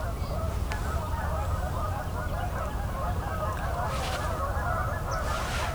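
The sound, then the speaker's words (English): A stirred-up flock of Canada geese honks continuously, a dense overlapping clamor of nasal calls with no clear pauses, under a steady low rumble of background noise. “The Canada geese are stirred up quite a bit.”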